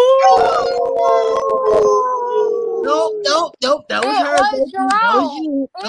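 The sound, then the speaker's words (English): Several voices howl like wolves together as part of a drinking game, long sustained overlapping wails for about three seconds, then break into laughter and excited chatter. “It says, quick, everyone howl like a wolf.”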